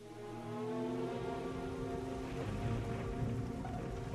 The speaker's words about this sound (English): The rain continued to fall.